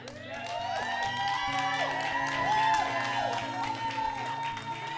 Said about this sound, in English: We need to do shouting and clapping. It confuses Satan and it defeats the enemy. When we shout in the Lord, supernatural power is released.